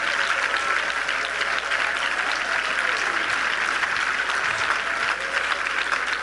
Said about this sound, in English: Clap your hands to the Lord in praise right now.